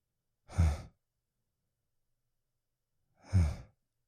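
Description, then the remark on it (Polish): Two heavy, breathy panting exhalations, fairly loud, separated by about three seconds of silence, with no talking around them. “… dyszy.”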